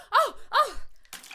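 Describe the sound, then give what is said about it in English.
Two sharp, voiced gasps in quick succession, then a brief, noisy splash of water thrown in a hyperventilating woman's face. “Like, throw some water in her face.”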